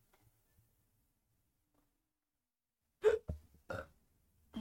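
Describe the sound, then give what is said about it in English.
After about three seconds of near silence, a handful of sharp, abrupt hiccups pop out, four short voiced jolts spaced irregularly with no talking. “So sorry, I've got hiccups.”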